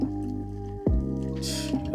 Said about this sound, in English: Bubbling again.